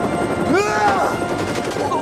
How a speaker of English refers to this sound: He just threw the bag of money into the helicopter blades.